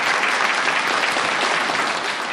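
A steady round of applause from a group for the evening's reading, dense crackling claps sustained at an even, loud level throughout with no pauses or voices standing out.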